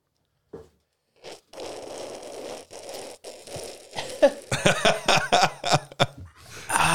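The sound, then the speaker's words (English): Froth of a Dayton Beer Overdrive West Coast IPA (7%) fizzing: a steady, noisy hiss that runs for a few seconds, then breaks into a string of louder, uneven crackling bursts and gulp-like pops. “We got some serious froth sound effects.”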